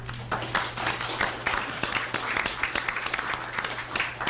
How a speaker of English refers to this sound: The May 1st, 2023 meeting of the Charlottesville City Council had something that's not been audible in a long time in City Council chambers. Applause.